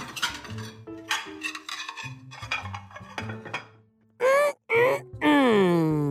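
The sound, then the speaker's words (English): Dirty dishes and cutlery from the sink clatter and clink in a busy, irregular run for several seconds as they are eaten, followed by loud vocal groans and munching-like moans with sliding pitch. “I have some dirty dishes in the sink just waiting for me to eat them.”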